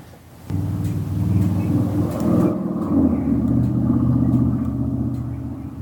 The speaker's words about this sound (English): This is so strange. I'm hearing live traffic right now.